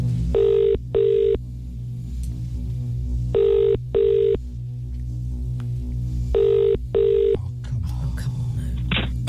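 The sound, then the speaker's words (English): A telephone ringback tone from a call placed on a laptop sounds in three evenly spaced double bursts, each pair of short electronic rings followed by a pause, loud and clear over a steady low hum. “Oh, it's ringing.”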